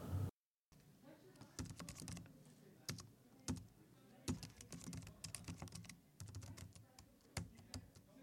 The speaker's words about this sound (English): Myself and other reporters often find ourselves hurrying, trying to finish a story, typing it out on our computers. Here's that sound of us typing away on the keyboard.